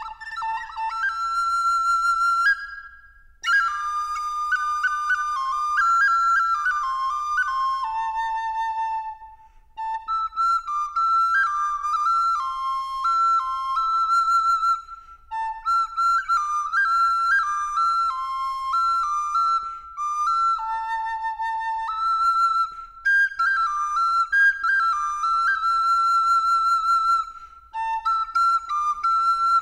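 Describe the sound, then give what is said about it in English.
A small wooden Native American flute, similar to a penny whistle, plays a breathy, high melody alone, with sustained notes and quick ornamented runs, fairly loud, pausing briefly between phrases. “It's like Native a penny. American penny whistle.”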